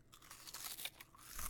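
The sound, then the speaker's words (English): Someone chews Chester's Hot Fries, a spicy corn snack, with a steady run of crisp, crackly bites through the whole moment and no talking. “You hear that crunch? So tasty.”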